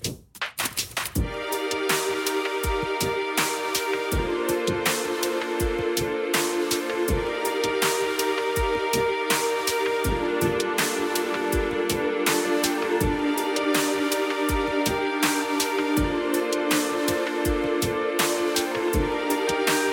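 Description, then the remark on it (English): Instrumental intro music: a steady, driving beat under sustained layered chords, holding a loud, even level throughout after a brief opening hit, with no voices. “You do have to listen to that, but listen to the intro music, and then you can hear all about it on Humming Fools.”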